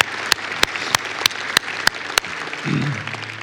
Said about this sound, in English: Hey, can we give God a round of applause for that right there? Thank you, Jesus.